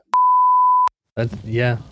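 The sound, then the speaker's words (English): A steady censor bleep tone sounds loudly for about three quarters of a second, cutting off sharply, followed by a pause and then a person talking. “That all of that better have been bleeped out. If I hear this on the episode, if I don't hear just the continuous beep sound”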